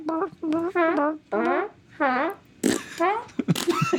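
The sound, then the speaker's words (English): A voice imitates farting with a series of buzzy, wavering blasts, about six in a row, fairly loud, ending in rougher, noisier sputters. “Instead of a dead silence, what if there's one you can fart on every step that you take?”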